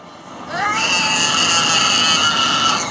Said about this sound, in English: Yeah, can we hear the baby on the airplane before we get to our...